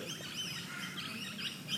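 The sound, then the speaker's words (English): Several birds in the trees by a full dam chirp and twitter together in a steady, overlapping chorus, with light outdoor ambience underneath and no voices. “We gather together in this place of outstanding beauty. Full dam, birds in the air, birds in the trees, koalas not far.”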